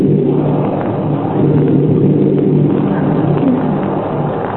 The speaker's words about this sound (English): And before we could nod off to sleep, we heard a clap of thunder, and it started to rain.